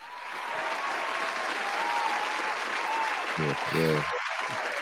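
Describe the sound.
Steady applause from a sizable crowd, dense and sustained for several seconds at a fairly loud level, with a brief voice cutting in near the end.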